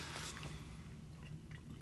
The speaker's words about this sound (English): Speaking of recycling, I'm gonna take a sip of my Gatorade here. It's a nice plastic apparatus.